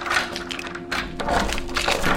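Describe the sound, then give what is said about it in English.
A video game door opens and then shuts, heard as a run of rattling, woody clunks and scrapes in uneven bursts over a faint steady hum, with no talking. “And what you're going to hear is a character opening a door, then attempt to close said door.”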